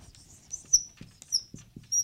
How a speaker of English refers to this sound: Me and my squeaky pen are together again. Yep. We like each other. Y'all, it's the only one with a wide enough end, so please don't hold it against me.